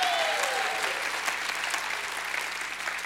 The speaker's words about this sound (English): Anybody in a house once was blind, but now you can see? You ought to give God a great hand clap and a shout of praise.